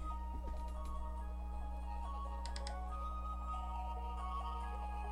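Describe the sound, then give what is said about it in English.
A song intro plays at low volume, a bright, ringtone-like electronic melody of short repeating notes over a steady low hum, with a few faint clicks and taps mixed in. “It's the beginning. You know, she gotta do her intro.”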